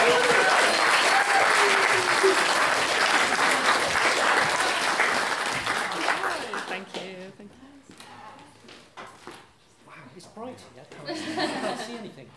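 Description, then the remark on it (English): An audience bursts into loud, dense applause that holds steady for several seconds, then thins into scattered claps and chuckles with a brief swell of clapping near the end. “Big round of applause!”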